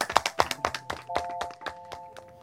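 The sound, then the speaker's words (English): Scattered hand claps from a small group applauding young people for their creative writing pieces, sharp, with uneven rhythm, over a faint steady tonal hum. “Another round of applause for you.”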